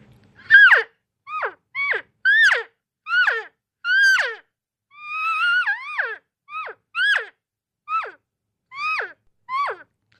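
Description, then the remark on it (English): About a dozen short, descending chirping calls, soft cow elk chirps blown on a double-reed elk call, each a quick whistly squeal that drops in pitch, spaced in an irregular rhythm with one longer, wavering call in the middle. “So you can do some nice soft cow chirps.”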